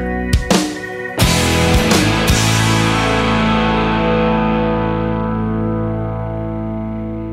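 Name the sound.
song playing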